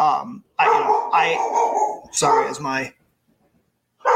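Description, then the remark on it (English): A dog barks and yelps in a loud burst of several drawn-out, whiny calls, pauses for about a second, then starts barking again. “My dog is barking.”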